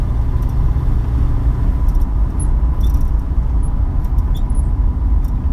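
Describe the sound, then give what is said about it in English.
An original muscle car engine rumbles loudly, a deep, throaty roar that holds steady for several seconds with no voices. “Yeah, you just there's no replacement for the sounds and the smells of an original muscle car.”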